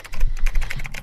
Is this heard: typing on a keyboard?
yes